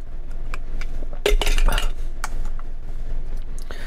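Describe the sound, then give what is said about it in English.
Glasses clink together in a toast, a bright ringing chime, surrounded by a few lighter taps and clicks against a quiet background. “Cheers, San Juan. Cheers.”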